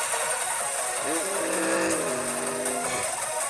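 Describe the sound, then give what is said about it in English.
A race car engine is refired and revs up, its rising whine climbing in pitch over a constant wash of loud, hissing track and crowd noise. “Skip gets the car refired.”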